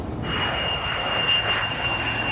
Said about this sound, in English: It was a CIA base, and the CIA program taking place at that base involved one of America's most secret and important reconnaissance missions, the spy plane, which became famous as the U-2 plane.